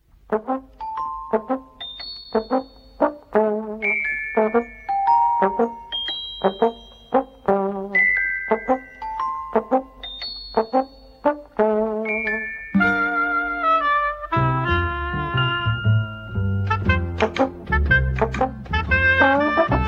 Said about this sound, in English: Okay, so here's the theme tune, and this is for Emma, of The Flumps.